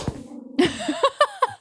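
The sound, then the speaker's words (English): A small dog lets out a quick series of four or five sharp, high-pitched yips, moderately loud, against a faint background hum. “And a little dog bark.”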